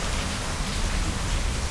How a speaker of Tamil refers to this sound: செம்மையாக மழை பெய்யுதுங்க. நள்ளிரவு ஒரு 12 மணி இப்போது.